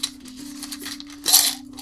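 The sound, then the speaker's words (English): Small dice game pieces of an Apples to Apples dice game rattle and clink inside a twist-open metal canister shaped like a soda can as it's handled, with a louder clattering burst near the end over a steady low background hum. “It looks like a soda can, but it actually is apples to apples dice game, and it says pulp free.”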